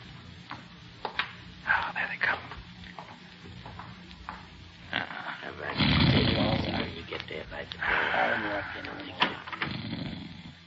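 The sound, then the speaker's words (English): A sleeping man snores loudly, a few long, rasping, rattling breaths with shorter snorts scattered between them. “He's asleep, all right. I can hear him snoring.”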